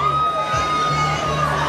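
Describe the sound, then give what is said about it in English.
A crowd of women in the audience at an eating contest screaming and cheering for their men to eat more and faster, loud and continuous throughout, with overlapping shrill voices blending into a dense roar. “and then in the audience are the women, and the women are sort of screaming for their men to eat more, eat faster.”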